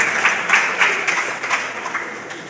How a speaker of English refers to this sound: Everyone, a round of applause for that comment.